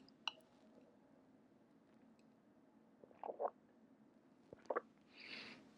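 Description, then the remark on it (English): Someone takes quiet sips of water: two short clusters of wet slurping and swallowing sounds, with a soft click beforehand and a brief breathy rush at the end. “Take a sip of water.”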